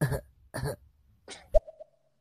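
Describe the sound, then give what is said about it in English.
Two short, forced coughs close together, followed by a brief throaty grunt with a thin tonal tail, performed by a single voice with no speech, imitating the cough a doctor asks for during a physical exam. “the doctor grabs your balls and then he goes, now cough, and you go.”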